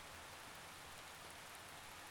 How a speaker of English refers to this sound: There's nothing you can do to stop the rain, except just let it happen. And enjoy the sound as it cleanses the air and earth around us. Today, all I ask is that you listen to the sound of the storm as it passes. Nothing else. Just listen.